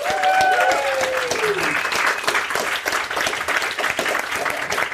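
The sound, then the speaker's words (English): A crowd bursts into loud, sustained applause with cheering and a few whoops as a television drama director is introduced, the clapping staying dense and steady for the whole stretch before easing slightly toward the end. “It has to get louder each time with the cheers.”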